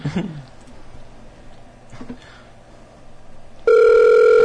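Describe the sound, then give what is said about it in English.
A telephone ringing tone sounds over the line as a call is placed to someone's mother, cutting in abruptly and loud after a few seconds of quiet, hissy line noise with a couple of faint clicks, then holding steady. “I do have the right number, right?”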